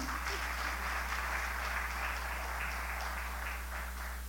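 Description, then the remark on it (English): A church audience at All Nations Church in Tallahassee applauds steadily before a youth reads a poem, a dense wash of many hands clapping at once, sustained at an even level throughout with a low hum underneath and no speech. “Please give her a round of applause.”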